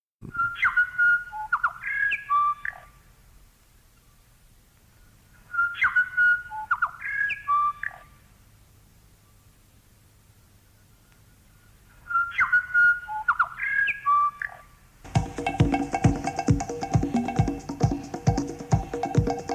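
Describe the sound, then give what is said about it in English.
Song of the New Zealand bellbird, a small olive-coloured bird, as used by Radio New Zealand International: three identical clear, bell-like whistled phrases, each about two seconds, separated by pauses, before a louder, dense burst of music cuts in. “That was Radio New Zealand International with its song of the bellbird.”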